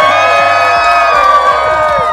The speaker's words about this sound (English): Everybody cheer in the background. Yeah.